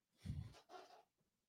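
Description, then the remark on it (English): A sleeping, dreaming dog lets out two faint, muffled noises in quick succession, a low soft woof followed by a breathy whimper, with no one talking. “Oh, the dog's dreaming.”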